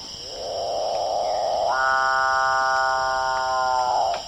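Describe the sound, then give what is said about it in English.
A capuchinbird (calf bird) of South America, a large passerine songbird, gives a loud, sustained call amplified by its throat air sacs: a droning, buzzy moan that abruptly jumps into a harsh, rasping tone with many stacked harmonics, held steady for several seconds before cutting off. “They use air sacs in their throats to amplify the call, which has been described by me as a cow being sawn in half with a chainsaw.”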